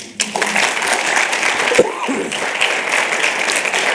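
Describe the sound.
A crowd applauds steadily for a few seconds, a dense wash of many hands clapping at once, fairly close and continuous with a brief voice murmuring underneath.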